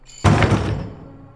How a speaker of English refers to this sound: Quickly, you turn to slam it and are greeted by teeth and claws, the door barely managing to connect with the stone before.